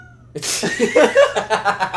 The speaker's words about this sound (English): He's like, just meowing at the fan blades. Hey, buddy, you doing all right? Loudly meowing at the fan blades.